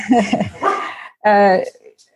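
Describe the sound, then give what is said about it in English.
The speaker's dogs bark a few times in quick succession in the background, the last call drawn out into a longer, tonal yelp, fairly clear. “there's my dogs in the background, by the way.”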